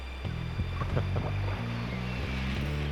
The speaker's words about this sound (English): Oh, yeah. You hear the water?